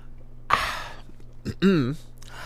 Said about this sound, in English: And we sip.